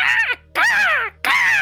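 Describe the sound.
A panicked raven that got indoors with the window closed caws loudly three times in quick succession, each harsh, rasping call breaking off sharply, with no talking.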